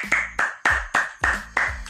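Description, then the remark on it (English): A small group clapping their hands in a steady, even rhythm, roughly seven firm claps over two seconds, fairly loud with no talking. “A round of applause for me, please.”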